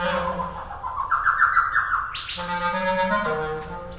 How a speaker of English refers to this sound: Oh, hello. The laughing thrush was interested. That's the thrush.